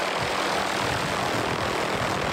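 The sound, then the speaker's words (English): A helicopter carrying a researcher to an adult female moose during a February afternoon moose darting and collaring study drones loudly and steadily, its engine and rotor noise forming a dense, unbroken roar with no voices. “taxied by chopper to an adult female who received the same treatment.”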